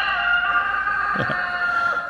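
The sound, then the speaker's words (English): A rooster crows loudly, one long, drawn-out cock-a-doodle-doo held for the whole moment, with no voices around it. “Before the rooster crows, before it crows twice,”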